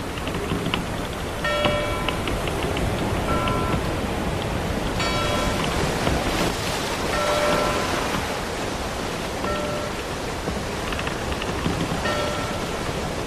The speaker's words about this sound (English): That bell means that the Argosy has sailed into port, bringing us a lot of mail.